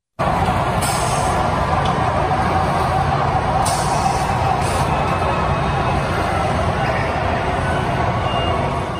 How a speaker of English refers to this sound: Okay, at the end, I don't think there was a... It sounded like something was backing up. Beep, beep, beep. So that probably wasn't part of it.